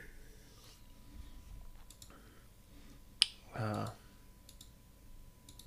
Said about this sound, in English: Sorry, yes, I know I'm clicking a lot and shit like that, so.